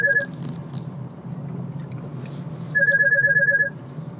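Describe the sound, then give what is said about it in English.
A phone rings with a pulsing electronic tone, a short burst at the start and then a longer warbling ring, over a steady low hum of background noise with no talking. “And as you heard my phone ringing, anytime I speak the truth, they try to distract.”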